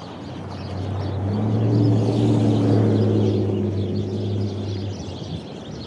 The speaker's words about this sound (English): there's a lot of birds. Can you hear the birds? I'm gonna cross the street so you can hear them. They're like in this tree. They're really loud. Hold on, I'm gonna cross the street. Can you hear the birds?